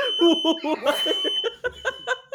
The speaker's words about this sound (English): Oh, my fire alarms are going off in my house. Oh my gosh, that's so loud.